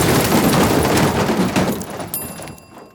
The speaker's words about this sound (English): Damn. Elevators make a lot of noise when they crash. Looks like the gremlins chewed entirely through the elevator cable.